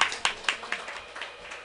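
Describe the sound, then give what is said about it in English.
A short burst of audience clapping at a comedy show as the next comedian is introduced, sharp hand claps landing in a quick, fairly steady rhythm, thinning out after a second or so, with no voices over it. “Clap wildly.”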